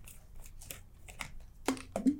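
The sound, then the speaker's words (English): A bong water bottle being opened: faint plastic rustling and small clicks, then two sharp snapping clicks close together, the last with a brief squeak of the cap. “So this is how you use this. You're going to open it up here.”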